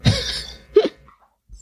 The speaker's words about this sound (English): No, but I just heard you coughing.